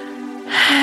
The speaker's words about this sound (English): And now we'll just take one beautiful deep breath in through the nose and out through the mouth, breathing in.